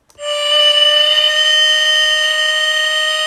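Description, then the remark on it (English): A five o'clock factory whistle sounds one long, steady blast, a loud, bright tone with rich overtones that starts abruptly and holds at a single pitch without wavering. No one speaks over it. “That's that 5 o'clock whistle.”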